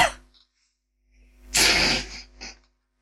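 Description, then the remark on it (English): A loud cough bursts out on its own, a harsh explosive blast followed moments later by a shorter, softer cough, with a brief breathy sound at the very start. “I thought he was deliberately coughing.”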